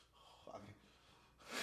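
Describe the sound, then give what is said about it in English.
A voice imitates the gasp of someone winded by a punch to the chest: a short breathy grunt, then a sharp, airy intake of breath that swells loudly at the end. “I'm like, oh, you're breathing hard now.”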